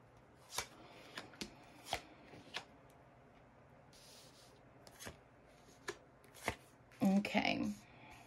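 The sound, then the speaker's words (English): A deck of tarot cards being shuffled one more time and split up: a series of crisp, papery slaps and riffles at irregular intervals, ending in a longer burst of shuffling, with faint room hum behind. “So I'm going to shuffle one more time and split them up and see what we got to say, okay?”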